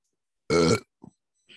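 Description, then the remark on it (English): A loud belch bursts out for about a third of a second, rough and resonant, followed by a couple of small faint grunting sounds; no talking. “That was a DDP belch.”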